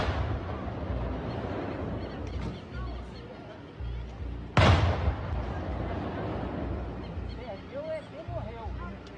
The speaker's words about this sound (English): And it wasn't just them. Many residents caught video and audio of what sounds like a firefight in the woods as military helicopters and vehicles flood the area.